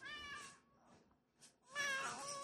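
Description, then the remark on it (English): Georgie the cat meows twice, fairly loud: a drawn-out tonal meow, a short pause with a faint chirp, then a second, stronger meow. No one speaks. “That was a little guest appearance by Georgie the Cat on the podcast.”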